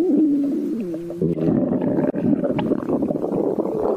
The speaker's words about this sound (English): this stomach rumbling, it's making me a bit nervous. Are we going to get thrown up?